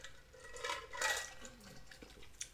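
A quiet sip from a drink, with soft wet slurping noises and faint clinks of a glass, peaking briefly in the middle before a small swallow and a light tap near the end.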